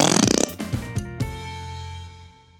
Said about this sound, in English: A whoopee cushion is a round rubber bag, kind of like a thick balloon. People use them to play jokes on each other. You fill the bag with air and put it on someone's chair. When they sit down on the whoopee cushion, it makes a sound like a fart.